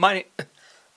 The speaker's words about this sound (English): I'm coughing a lot. Sorry, that's just a reality we're dealing with this week.